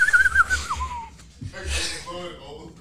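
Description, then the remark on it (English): A voice imitates a woman's cartoon-style snore while sleeping: a thin whistling tone that slides downward, then a short pause and a rough, breathy wheezing inhale, moderately loud. “She has a cartoon snore.”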